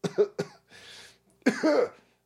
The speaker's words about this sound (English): I need a cough button.